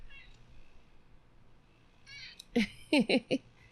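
A cat meows several times in quick succession, loud, after a soft chirpy trill, against a quiet low background hum.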